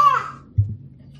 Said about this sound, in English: Sorry, my daughter just came in here screaming.